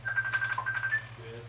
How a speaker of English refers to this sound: I'm trying to, bro. It just dialing. His phone is fucked up.